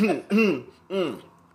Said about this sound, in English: Look, you drinking because you about to cough again.